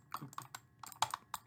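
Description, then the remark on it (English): Several crisp computer keyboard key clicks tapped out in an irregular rhythm, fairly quiet, with short pauses between presses and no voices. “You're like a fucking retarded dad clicking a fucking key.”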